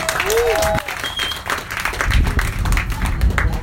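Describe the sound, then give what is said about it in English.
An audience at a comedy gig breaks into loud, steady applause welcoming the next performer, many hands clapping in a dense, rapid patter that holds strong for several seconds with a few brief tonal squeaks early on. “Let that clap come out is one of the most worrying things I've heard for a while.”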